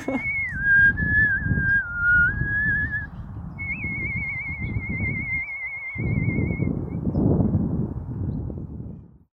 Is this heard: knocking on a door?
no